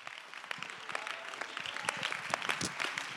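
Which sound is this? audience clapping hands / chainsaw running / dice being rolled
audience clapping hands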